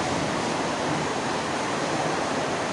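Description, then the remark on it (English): Heavy rain pours down in a dense, steady hiss that fills the whole range evenly, loud and unbroken throughout, with no voices or other sounds breaking through. “I know the rain is much.”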